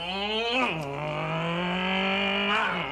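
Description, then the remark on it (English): A man sitting on a bike imitates a motorcycle engine with one sustained, buzzy vocal rumble lasting about three seconds. The pitch dips early, holds steady, then revs upward at the end, fairly loud. “He gets on the frickin' bike, and then he makes motorcycle sounds like a little baby.”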